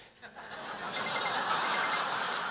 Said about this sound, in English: You know what? My phone is telling me that I fell down.